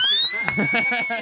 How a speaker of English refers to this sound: You know what that means? It's the serious get back to work whistle.